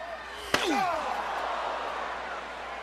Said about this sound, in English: God, a chair shot just makes you sick, makes your blood just, your blood curl.